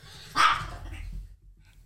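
A dog, Nero, barks at an airplane it hears, letting out one sharp, loud bark that quickly fades, leaving a low, steady rumble underneath for the rest of the moment.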